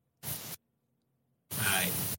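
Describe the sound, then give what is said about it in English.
Two harsh bursts of static crackle from an internet audio connection during a live stream, a short hiss followed by a longer, louder one after a brief silence, with no talking. “No, you hear static? I hear static, bro.”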